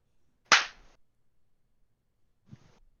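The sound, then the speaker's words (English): A group claps together once in unison on a count of three, a single loud, sharp crack that fades quickly, followed about two seconds later by a much fainter, softer sound. “We clap on three. One, two, three.”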